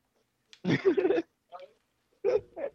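A dog barks outside: a longer run of barking, then a short yelp and two sharp barks close together, fairly loud with quiet gaps between the bursts.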